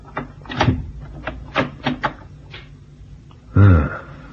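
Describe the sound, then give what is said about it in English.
A cabin door handle on an Oriental-built ship rattles and clicks several times in quick succession, followed by a louder thud and creak as the door swings open, distinct with no talking. “And now's my chance to try the door handle.”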